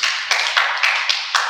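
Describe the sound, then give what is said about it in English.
An audience claps for themselves in a steady, dense burst of applause, loud and continuous, with regular swells roughly four times a second giving it a rhythmic pulse. No one speaks. “Can we clap for ourselves?”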